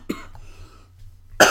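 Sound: cough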